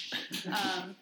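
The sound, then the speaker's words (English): A dog struggles to get up: a second of scrabbling and shuffling, with a brief high whine-like tone in the middle. “sorry, the dog. But dog has trouble standing up.”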